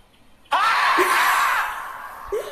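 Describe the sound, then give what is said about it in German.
A marmot lets out one long, shrill, piercing scream that starts abruptly, holds for over a second, then fades, with a brief squeak near the end. “Also, ein Murmeltier schreit.”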